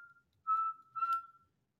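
A person whistles two short, steady notes at the same pitch, the second slightly longer, heard clear with no talking.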